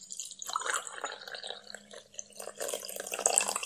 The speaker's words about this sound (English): Hey, I just poured you a cup of coffee.